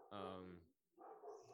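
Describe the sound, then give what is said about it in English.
A dog lets out a loud, drawn-out bark, then after a short pause gives a rougher, noisier bark or growl. “dogs drink, barking, drink. Yeah, they're barking.”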